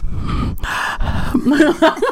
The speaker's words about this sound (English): Can you hear me breathing? Yeah, like, sort of. Is it, like, annoying?